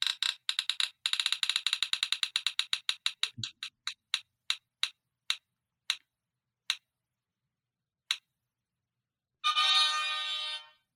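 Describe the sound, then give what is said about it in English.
Rapid electronic clicks from a spinner app on a phone gradually slow down, spacing out into single ticks before stopping, followed by a short bright chime, as the spinner picks who chooses the next book. No one speaks over it. “Let me turn up the volume so we can hear the little spinny thing.”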